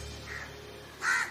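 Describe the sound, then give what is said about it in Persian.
A crow lets out a single loud, harsh caw toward the end, after a fainter, softer call earlier, with a low steady hum in the background. “کلاغ‌ها که رفتار قارقاری رو دوست نداشتن، تصمیم گرفتن اونو تنها بذارن.”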